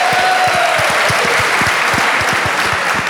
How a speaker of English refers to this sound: So, yeah, give him a round of applause.